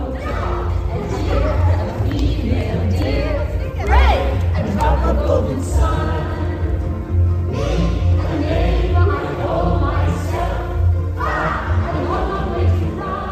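A large crowd at the AFI Life Achievement Award ceremony sings along together, many voices blending into a loud, continuous, wordless-sounding chorus with rising and falling melodic swells throughout.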